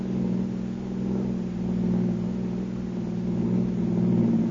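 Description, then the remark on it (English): A car engine drones steadily, a low rumbling hum with slight rising and falling surges as the vehicle rolls along a bumpy road, with no voices. “Turn into it. Yeah, it's a bumpy road.”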